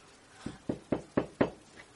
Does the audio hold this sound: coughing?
no